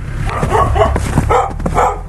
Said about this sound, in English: I think this is why they didn't take the two dogs in the middle that are barking